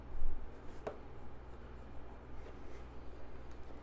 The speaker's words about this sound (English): Let me see what I got here. Dice.